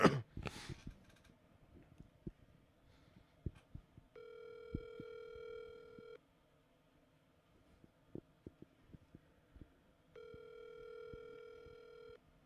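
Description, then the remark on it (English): A phone line rings back twice, each steady buzzing tone lasting about two seconds with a long silent gap between, heard through the earpiece over faint clicks and handling noise. “It's ringing.”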